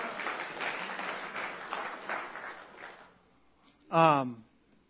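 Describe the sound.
A small audience claps steadily for about three seconds for someone who has just finished a reading, a dense patter of hands that fades out, followed by a brief spoken voice.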